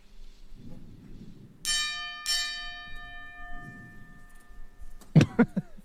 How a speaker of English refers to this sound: This time, to honor the memory of those we've lost, please join us in a 10-bell salute. Here we go. 10 bells.